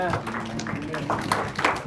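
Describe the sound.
An audience gives the Lord a hand clap before sitting down, a burst of scattered, uneven claps, with voices calling out over the clapping throughout.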